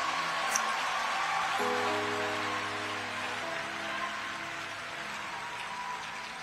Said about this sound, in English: Clap for the new year. Hallelujah.